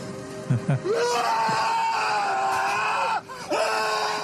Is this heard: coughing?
no